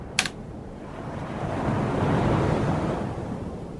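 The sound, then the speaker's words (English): Ocean surf at Basin Beach and adjoining Mona Vale Beach rushes in a broad, steady roar that swells to a peak midway and then eases off, with a brief sharp click near the start and no voices. “On the foreshore of Basin Beach and adjoining Mona Vale Beach, there are benches and seats that face the ocean.”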